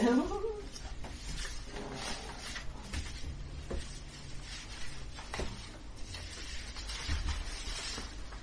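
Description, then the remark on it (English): Many pieces of paper being shuffled and rustled, a steady dry crinkling that runs throughout with a few sharper flicks, while a faint voice murmurs briefly near the start. “It's just possible I have too many pieces of paper.”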